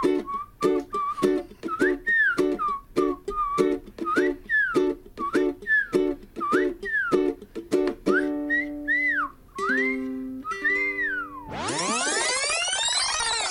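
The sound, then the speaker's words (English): Someone whistles a wobbly, loose tune drunkenly in repeated swooping phrases with sliding pitch bends, fairly loud, before a bright rising swell of tones sweeps in at the end. “Here comes the drunk whistle.”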